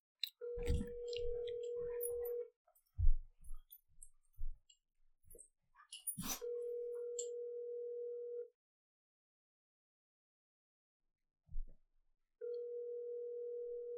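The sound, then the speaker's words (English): A phone line rings out on an outgoing call to the caller's mother: three steady ringback tones, each about two seconds long with long silent gaps, mixed with a few handset clicks and thumps, and nobody picks up. “She's not even going to answer my phone call.”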